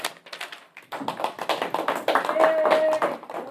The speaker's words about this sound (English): Yay! Our students are actually alive and breathing and responding to the applause sign.